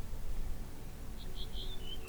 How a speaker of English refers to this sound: You notice the birds singing in the trees, softly chirping and singing songs of their simple happiness.